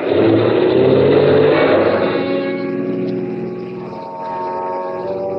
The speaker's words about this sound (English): After I got the car back onto the road again, I felt like a fool.